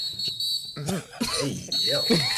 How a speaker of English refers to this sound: Thank God for that whistle at that time. That's why he's been going, oh shit. About to get real flagrant. Hey, dude just blew the whistle on y'all.